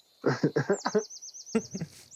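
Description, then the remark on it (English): A person whistles a bird call, a warbling high-pitched trill with rapid rhythmic pulses, over bursts of talking and laughter, ending in a brief squeaky chirp. “Professional bird caller.”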